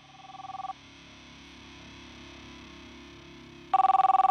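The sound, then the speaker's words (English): A telephone rings in short pulsing bursts, one brief ring, a pause with a low hum underneath, then a louder, harsher ring starts again. “are you actually ever going to get sorted with this phone thing going on, mate, or what?”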